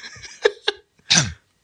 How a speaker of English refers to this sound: Oh. Was that one slurp? I made the schoolboy error of breathing in before I slurped. So did I. That's why I'm choking to death now.